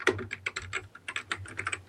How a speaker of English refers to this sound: A lot of people ask about the keyboard. I'm gonna drop a mandate that Start writing all of these down? Please start writing all of these down. Mention what kind of keyboard every time you are making that sound.